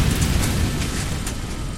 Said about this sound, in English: It must have been the gas tank exploding.